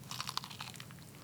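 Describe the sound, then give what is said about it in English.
Crunching as someone bites into crispy, slightly spicy fried chicken, a quick series of crackly, brittle bursts with no talking. “Oh, that has a nice crunch.”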